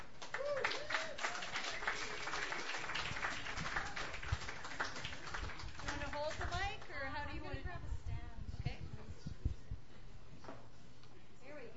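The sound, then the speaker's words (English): An audience claps steadily and densely for several seconds as a performer is welcomed, with voices cheering and chattering through the applause before it slowly thins out. “So please give a warm welcome.”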